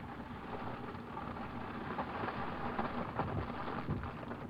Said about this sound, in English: Well, that sounds like some paper burning. That'd be Bern, Switzerland.